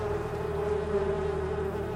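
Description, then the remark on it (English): A swarm of bees drones steadily and continuously, a dense buzzing hum that holds at an even, fairly loud level throughout with no voices. “The bees are now enraged and they begin swarming the room.”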